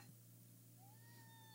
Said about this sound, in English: And so, oh my God, there's a pod cat. She's trying to lick my plate where my burrito. I'm telling a really interesting story, Izzy.